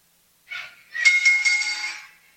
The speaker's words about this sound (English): So with that, Mr. Bell Ringer, let's hear a bell, please.